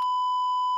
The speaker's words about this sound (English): We're gonna wear that beep button out. I'm telling you right now.